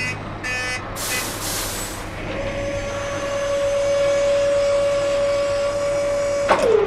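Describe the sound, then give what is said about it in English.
A large truck, a pop-up clothing shop on wheels, rumbles in, with a sharp hiss of air early on, a steady whining drone as it rolls up, and a final brief squeal and hiss as it stops. “And since we're all here in the same room, we're going to take the same vehicle, which is a pop-up shop on wheels.”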